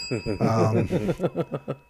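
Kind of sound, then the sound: signal or alarm, bell being rung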